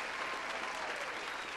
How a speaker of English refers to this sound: A round of applause for him, man.